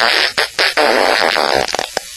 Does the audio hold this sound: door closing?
no